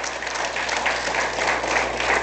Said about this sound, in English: There are men of God. You go ahead, clap your hands.